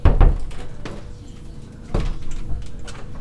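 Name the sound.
door opening and closing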